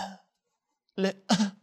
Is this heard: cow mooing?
no